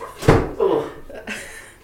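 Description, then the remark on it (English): A single solid thump of a door being shut on Kaya, a new pet kitten, followed by a few faint bumps and muffled sounds. “Okay, well, I'm going to shut the door on you.”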